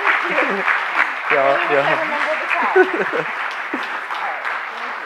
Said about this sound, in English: We could keep applauding. This doesn't have to stop.